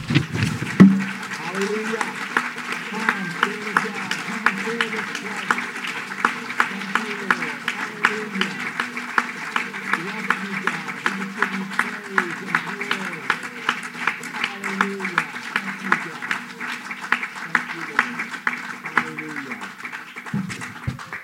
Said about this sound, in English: Can we just give the Lord and give the Holy Spirit a round of applause?